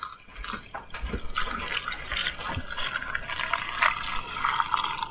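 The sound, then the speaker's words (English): Brine pours steadily into a quart-size glass ball jar to cover vegetables, a continuous splashing gurgle that rises slightly in pitch as the jar fills, fairly loud with no talking. “So we're going to pour this right into our jar here. Cover those vegetables.”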